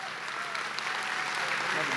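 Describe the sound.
Steady applause from a large crowd standing to honor the guest pastor bringing the word that morning, a dense, continuous patter of many hands clapping at an even, fairly loud level throughout, with faint voices mixed in.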